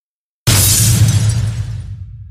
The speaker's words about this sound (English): She lashed out with the force, shattering the precious bones against the wall.